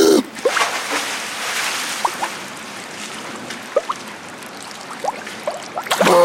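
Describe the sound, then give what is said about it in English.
Water splashes and churns continuously as someone dives into rainwater in heavy rain to retrieve a dropped phone, with scattered drips and bubbling, and louder bursts of splashing at the very start and end. No voices. “I dropped my phone in the water, so let me just dive in and get it.”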